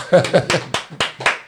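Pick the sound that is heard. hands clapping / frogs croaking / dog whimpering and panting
hands clapping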